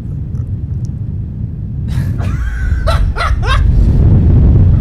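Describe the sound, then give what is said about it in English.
Gale-force wind coming off the lake during a storm in Lake City roars in a heavy, steady rumble that builds slightly louder, with a few brief higher-pitched howls cutting through near the middle. No one speaks. “It sounds a little windy out there”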